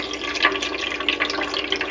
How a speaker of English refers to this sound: Just take a moment to feel the calm of the Brita water dripping through the charcoal, landing gently into the Brita jug. It's a little just tiny daily moment of Zen in your day.